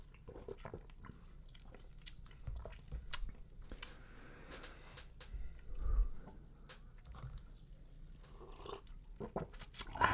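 People sip a ginger drink: quiet sipping and swallowing, with small wet mouth clicks and slurps scattered irregularly over several seconds, and no talking.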